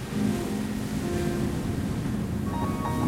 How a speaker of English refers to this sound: Rompen las olas, el estruendor, cómo se ve el paisaje, los empedrados. I hear the sound of the waves breaking, the rumble, and I can see the landscape full of rocks in the moonlight.